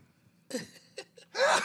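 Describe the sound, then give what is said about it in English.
A few short, sharp gasping inhales build up, then a single loud, breathy sneeze bursts out at the end. “I'm going to sneeze.”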